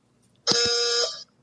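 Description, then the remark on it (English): A single trivia-game buzzer being tested blares for just under a second, a flat, steady honk rich in stacked harmonics, sounding much like a thin car horn, starting and stopping abruptly with no talking. “My wife says I have a wimpy car horn, and that is exactly what it sounds like.”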